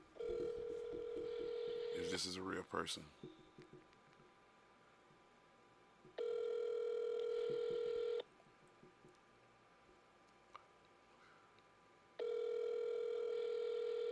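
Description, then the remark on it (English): An outgoing phone call: a steady phone tone, a quick burst of keypad dialing beeps, then two long ringback tones spaced several seconds apart, with quiet talking in the gaps. “Let's see if Joey answers the phone.”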